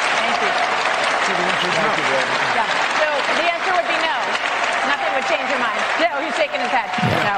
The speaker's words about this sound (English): So he's shaking his head no. You can't hear him say no over the applause.